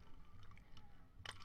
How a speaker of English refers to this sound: Sorry, my throat's getting dry. I didn't realize this happens talking a lot. I'm not used to talking a lot. Let me take a sip. Right here.